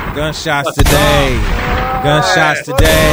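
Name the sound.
gunshot sound effects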